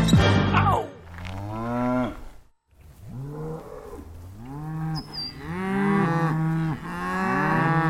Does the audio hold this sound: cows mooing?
yes